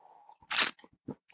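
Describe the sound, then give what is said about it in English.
A single quick sip of coffee from a cup on the Outer Banks of North Carolina: one short, noisy slurp, then a soft swallow-like sound and quiet. “Here's to you a sip of coffee.”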